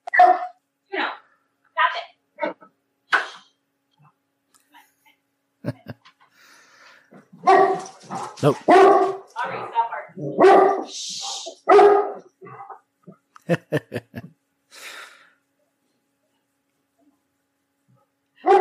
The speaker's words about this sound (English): Hang on one second. Let me go tell them to stop barking.